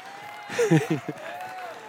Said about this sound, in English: Here we go. Ready, set, go. Cheer him on. Cheer him on.